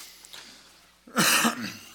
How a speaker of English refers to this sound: Excuse me, I may cough a couple times. This is exactly 1 month since I got sick. I have something funky going on in my throat on a chronic level.